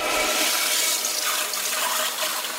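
A toilet flushes loudly, a steady rush of swirling water that fills the whole moment without any voices.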